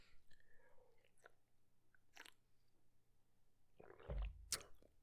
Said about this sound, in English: Losing my train of thought. Maybe a sip of water.